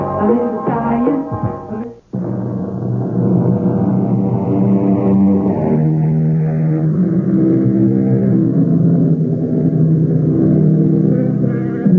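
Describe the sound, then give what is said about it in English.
The powerful engine of a Buick Regal turbocharged sport coupe revs loudly, cuts out briefly, then roars back with a steady, rising drone that holds for several seconds. “With the wizardry of a turbocharged sport coupe.”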